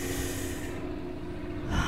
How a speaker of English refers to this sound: Just breathing and relaxing.